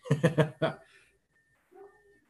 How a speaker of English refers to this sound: So now that I think about it, my fucking dog's barking.